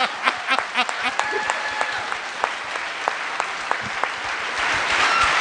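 A crowd applauds steadily, many hands clapping in a dense, crackling wash with a few sharper claps standing out, growing slightly fuller toward the end.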